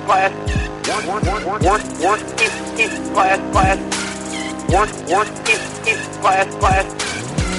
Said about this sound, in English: I'm still in a car. Road tripping. It's a truck. We're in a truck, road tripping, podcasting. Made a wrong turn in Nevada. We're heading out to Wyoming and going to hunt some bears.